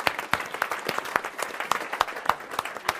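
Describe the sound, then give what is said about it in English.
A room full of people applauds steadily, a dense patter of many hands clapping with a few sharper, louder claps standing out, sustained throughout at moderate volume. “Big round of applause.”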